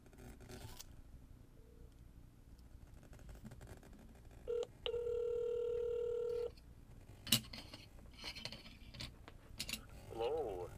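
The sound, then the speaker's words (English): A quick beep of phone dialing on an outgoing call, then a steady electronic ringing tone for about two seconds, followed by a few sharp clicks and handling noises over a quiet hum. “So let's give Greg a call and see if we can get him.”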